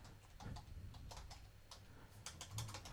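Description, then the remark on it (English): Quick, uneven taps of fingers typing a search for a Pi keyboard on Amazon on a computer keyboard, a steady run of soft clicks with a low hum underneath and no voices. “Yeah, just type Pi keyboard.”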